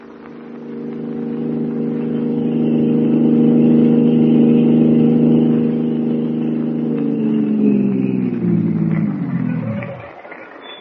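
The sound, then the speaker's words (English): A car engine hums steadily at a loud level as the car drives toward an apartment, then the pitch drops and the engine winds down to a stop near the end. “My car, we should reach your apartment in a couple of minutes.”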